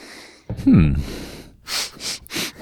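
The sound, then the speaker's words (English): A brief voiced huff, then three quick, loud sniffs right up against the microphone, each a short breathy burst of air in fast succession. “Are you getting a good sniff in there?”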